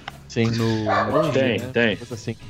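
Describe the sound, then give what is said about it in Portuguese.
A small dog, one of two dogs at a house in Brasília, barks and yelps, its high voice rising and falling in a string of drawn-out, whiny yaps lasting a couple of seconds. “E esse cachorro participando aí da...”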